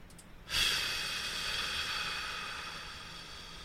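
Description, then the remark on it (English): An answerphone message from a caller in Maidstone who stays silent: after a brief quiet moment, a steady hiss of open line noise comes in and slowly fades, with no voice at all. The message runs about two minutes. “This message looks like it goes on for about 2 minutes.”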